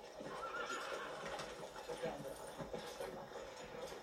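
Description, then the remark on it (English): A horse whinnies amid steady clip-clopping of hooves, the sounds fairly loud over a busy ambient bed, with indistinct voices murmuring in the background throughout. “Search the horses.”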